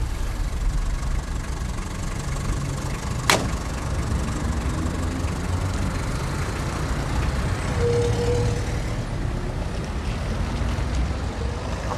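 A London black cab's diesel engine idles in Bank, London, with a steady low rumble throughout, joined by a single sharp click partway through and a faint tonal whine later on.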